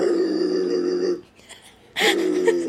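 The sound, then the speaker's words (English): A person imitates a dog for a bark of the week submission, with a long, rough, growling vocal sound, a brief pause, then a second loud, harsh bark-like burst that cuts off abruptly. “you were the first submission for the bark of the week.”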